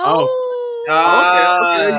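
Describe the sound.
A person's voice imitates a wolf howl while making NFL game picks for Saints vs Browns, a sustained wavering tone that holds for under a second, followed by a second rising, bending howl. Loud, with no other sounds.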